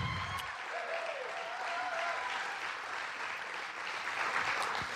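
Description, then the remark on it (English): Sustained applause from a large audience enjoying a joke, a dense steady wash of many hands clapping at once, fairly loud and continuous throughout with no talking over it. “Now I know that you were enjoying the joke, that's why you were clapping.”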